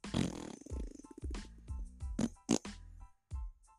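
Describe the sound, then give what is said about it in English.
A string of loud, sputtering fart noises, several buzzing blasts in quick succession with brief pauses between them, with no talking. “And right when it gets good, she farts.”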